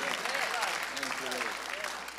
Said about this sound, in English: If you believe it, clap your hands and give God praise. That's a believer.